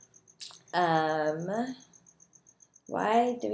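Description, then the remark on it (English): Crickets chirp in a backyard at night in a steady, rapid high-pitched pulse that runs faintly through the whole scene, while louder human voice sounds rise over it in two bursts. “There's crickets. My backyard is very active.”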